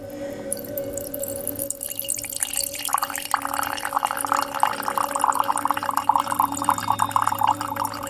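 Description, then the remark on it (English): Weak lemon drink pours steadily into a cup, a rising gurgling trickle that grows fuller after a brief quiet start, with a faint hum underneath and no talking. “I've brought my weak lemon drink, so I just need to pour that out.”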